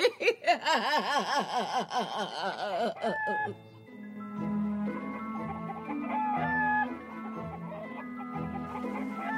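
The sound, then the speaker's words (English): Loud, warbling rooster-like crowing and rapid chicken clucking fill the first few seconds, then give way to steady, tonal background sounds. “Well, cock-a-doodle-doozy. How did the Firebird turn into the funky chicken?”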